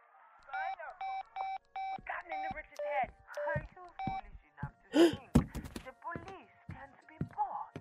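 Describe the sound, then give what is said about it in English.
A quick run of telephone keypad dialing tones, short evenly spaced beeps, clear, followed by a few more tones, then clunky handling thuds and some indistinct voices. “I have a call to make.”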